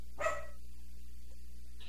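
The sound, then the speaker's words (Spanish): A small dog gives one short, sharp bark near the start, then falls silent over a steady low background hum. “Son un perrito.”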